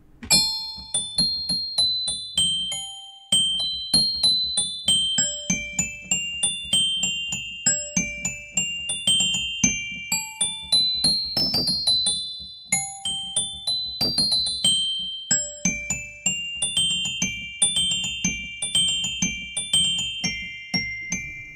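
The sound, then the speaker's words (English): Bright sampled Papageno bells, a glockenspiel-style keyboard instrument from a sample pack played with a dry preset, play a busy melody of quick struck notes that ring and overlap, over a low, steady background rumble, with no talking. “Papagino bells. I mean I gotta check it out.”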